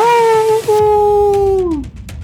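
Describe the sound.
A single sustained wolf howl with a steady tone and rich harmonics, briefly breaking before holding on and then sliding downward as it fades, loud.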